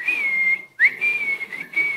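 A person whistles a long, steady high note, breaks off briefly, then resumes with a quick upward slide and holds the tone again; clear, with no talking.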